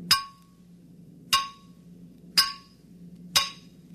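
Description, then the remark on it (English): Four sharp metallic bangs as someone bangs with a metal cylinder, at a steady, slightly uneven pace, each with a bright ringing clang that quickly fades over a low steady hum, no voices. “Now start banging.”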